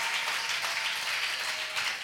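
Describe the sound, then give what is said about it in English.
Sustained applause from an audience, a dense, steady wash of many hands clapping at once with no pauses, moderately loud and heard without any talking over it. “The stages of demonic attack is a good place to clap because God is going to bless you today.”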